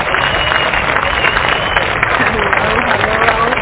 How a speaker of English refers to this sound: So let's welcome him to the show with a wonderful round of applause.